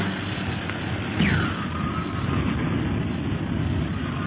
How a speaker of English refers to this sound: Whee! The plane bucks like a bronco in this wind.